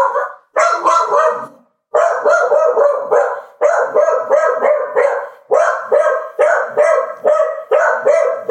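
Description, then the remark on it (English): A dog barks frantically and nonstop, loud, firing off rapid strings of sharp barks with only one brief pause, no voices over it, set off by a delivery arriving. “That's why the dog went nuts.”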